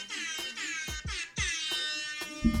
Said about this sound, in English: And you told me not to do the air horn, but I'm gonna do the fucking air horn because we're done.